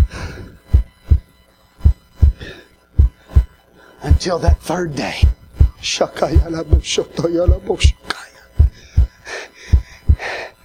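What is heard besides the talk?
heartbeat sound effect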